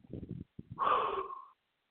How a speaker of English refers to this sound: Excited breathing thing. I want to bring a high quality radio. My brain works a little faster than my lungs. And my lungs be boom, boom, bang, boom, boom, boom.